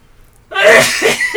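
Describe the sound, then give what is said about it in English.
Three sneezes in quick succession, loud, each a sharp noisy burst after a moment of quiet, the last two coming faster than the first. “Oh, wow, it was a triple sneeze.”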